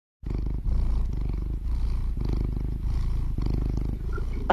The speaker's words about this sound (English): Lizzie is a very round cat, and she's the most loving, and she purrs like that.